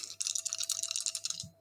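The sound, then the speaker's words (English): A quick, dense clatter of Fate dice being rolled for an engine roll, rattling and tumbling together for just over a second, fairly crisp, ending with a soft knock. No voices. “Okay, so I'm going to pick up my fate dice and we're going to do my engine roll.”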